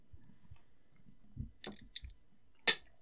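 A small die clatters off a table and hits the floor: a few sharp, irregular clicks and bounces, the last impact the loudest, with no one speaking over it.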